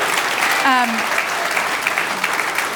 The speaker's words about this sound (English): We should give him a clap for that, not just mom.